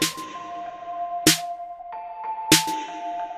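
At the opening of a song, bell-like keyboard tones ring in sustained, shimmering notes while a low xylophone adds soft mallet strikes and a high, ethereal, cloud-like layer floats on top, with bright struck accents landing roughly every second and a quarter; no voices.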